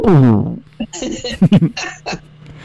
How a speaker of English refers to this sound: Burp burp burp burp.